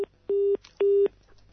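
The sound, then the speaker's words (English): A dropped phone call's disconnect tone as a phone interview cuts out: steady, mid-pitched electronic beeps in an even on-off rhythm, a clipped one and then two full beeps, each about a quarter second, with no talking. “Hold on, everyone. I've just lost Renee.”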